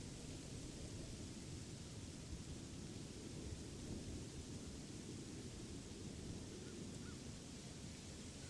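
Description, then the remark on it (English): A steady, dense wash of storm noise with a heavy low rumble running throughout, like rolling thunder under constant rain-like hiss, with no voices present. “Observe the storm before you, dark and ominous.”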